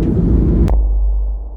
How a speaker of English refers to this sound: And sorry about the voice, because like I'm in the plane, so maybe there might be disturbance or maybe noise or turbulence, I don't know, but hope you find this valuable.